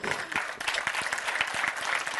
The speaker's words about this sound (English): Y'all ain't clapping like you mean it. Y'all ain't clapping like you mean it.